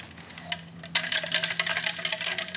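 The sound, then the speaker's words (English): Ice cubes tinkle and clink against a glass in a quick, bright flurry of small chiming knocks, fairly quiet, with no talking over them. “Tinkling of the ice or whatever.”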